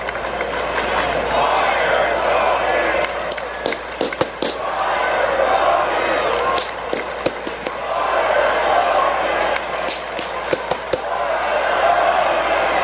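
At a Rangers baseball game in the 10th inning, a loud stadium crowd roars and chants while a broadcaster's sharp claps ring out in rhythmic bursts, keeping time with the chant in several clusters over the steady crowd noise.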